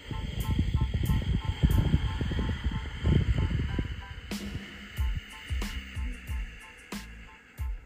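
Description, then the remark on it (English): A long, rushing ujjayi exhale through the nose, a steady, breathy hiss like sea wind lasting about four seconds, then dropping to softer breath noise with a few faint clicks. “think of constricting the muscles just very lightly in your throat, and think of that sea wind sound”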